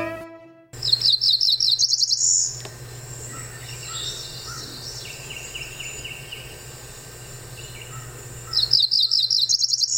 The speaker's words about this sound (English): The cerulean warbler is a small songbird of the warbler family, only about 4.3 inches. Adult males have pale cerulean blue and white upper parts with a black necklace across the breast and black streaks on the back and flanks.